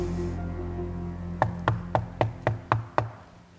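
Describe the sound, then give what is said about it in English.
Seven quick, evenly spaced knocks on a front door, sharp, rapping out over a low steady hum with no one speaking. “Now that's the sound you might soon hear at your own front door.”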